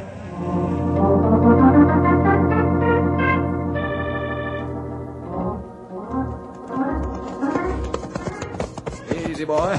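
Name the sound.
horse hooves clip-clopping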